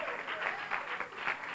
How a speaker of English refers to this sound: Praise the Lord. Come on, give the Lord a good hand and clap of praise. Hallelujah.